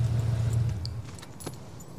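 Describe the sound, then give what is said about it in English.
Keys jangle and clink in short metallic bursts as someone searches for the key to turn on a gas pump, over a steady low rumble like an idling car, moderately loud, with no one talking. “Yeah, they're trying to find the key to turn on the gas pump.”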